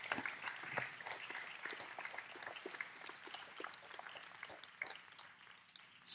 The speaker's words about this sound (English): Thank you so much. Another round of applause for Joe.